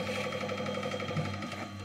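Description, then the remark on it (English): An old washing machine converted into a still runs with a steady mechanical hum and a faint rapid rhythmic whirring, continuous and even, with no voices. “An old washing machine turned still.”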